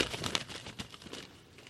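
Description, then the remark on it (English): A paper thank-you letter rustles and crinkles as it is handled before being read aloud, a quick run of soft, crackly handling noises, quiet, fading out toward the end with no one speaking. “So just read off the paper.”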